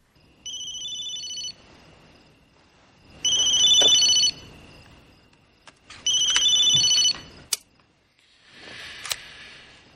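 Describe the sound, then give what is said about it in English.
A phone rings three times in the middle of the night while a man is fast asleep in bed, each a bright electronic trill about a second long with pauses between, followed by a softer rustling noise and a sharp click. “cut to Chuck, fast asleep in his bed, and he's getting a phone call”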